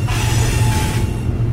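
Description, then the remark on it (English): A steady, low rumbling drone of a freight train of 72 tank cars carrying 7.7 million liters of crude oil rolling along winding tracks through the Eastern Townships in Quebec, with a constant hum and faint metallic hiss, loud and continuous with no voices. “72 tank cars carrying 7.7 million liters of crude oil chugged along the winding tracks through the eastern townships in Quebec.”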